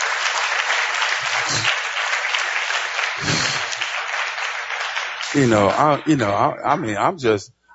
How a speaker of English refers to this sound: Would you clap your hands one more time for that film?